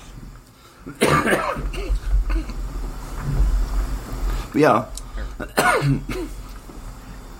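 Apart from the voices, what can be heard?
man coughing repeatedly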